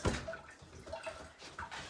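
A fifth can of liquid glugs and splashes steadily into a pot on a lit stove burner for a couple of seconds, a moderately quiet pour with a brief louder splash at the start and no talking.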